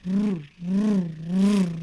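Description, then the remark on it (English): A small outboard trolling motor hums, its pitch rising and falling in three steady surges as the throttle is worked up and back down, steering the boat left and right toward shore, its exhaust coming straight into the pod. “It's an outboard motor, but it's like we've got the back end of the pod cut open so that it just sticks into the.”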